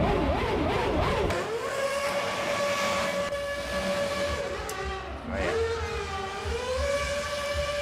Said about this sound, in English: Was that doing burnouts in the Red Bull car?